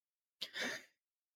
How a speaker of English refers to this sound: as I cough. Bless you.